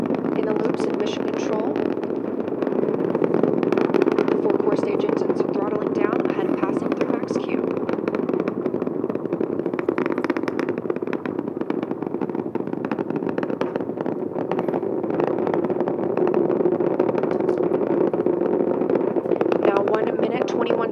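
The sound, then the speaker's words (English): The engines of an SLS rocket roar steadily during launch, over a minute into flight, with the four core stage engines at maximum thrust and the solid rocket boosters still firing: a dense, continuous rumbling blast that stays loud and unbroken, with a crackling, ragged texture on top. “The 4 core stage engines are back at maximum thrust.”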